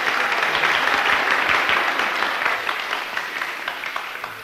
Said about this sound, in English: Praise the Lord. Give them a good clap, come on.